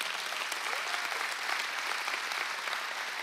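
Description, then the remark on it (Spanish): A crowd applauds the speaker's wife as she stands up, a dense wash of many hands clapping at once, sustained and even in loudness for a few seconds without any voices standing out. “Y si le dan un aplauso fuerte a mi amada.”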